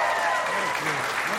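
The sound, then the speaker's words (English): A round of applause from a group of about a dozen people applauding themselves, steady and fairly loud, with dense overlapping claps filling the whole moment without a break. “Give a round of applause for yourselves right now.”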